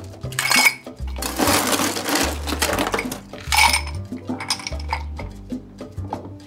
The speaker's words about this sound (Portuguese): Vamos reservar o nosso copo agora com gelo.